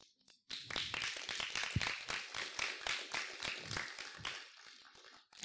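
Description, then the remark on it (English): Scattered, uneven clapping from a group starts abruptly and continues as a loose patter of sharp claps for several seconds, thinning out and fading near the end. No one speaks. “Some of y'all are like, I don't know if I should clap for that or not.”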